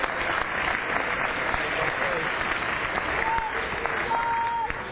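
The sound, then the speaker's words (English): An audience gives a polite golf clap, applauding steadily for about five seconds, a dense, even wash of many hands clapping at a constant moderate level, fading slightly at the very end. “Like that, we don't give a golf clap, you know, like that was a nice clap.”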